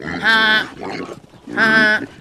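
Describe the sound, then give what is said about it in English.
Two loud, harsh squealing calls from pigs and geese ring out as they are being herded, separated by a brief pause with softer grunting in between. “Like, pigs in one room and geese in the other, or split them up half and half?”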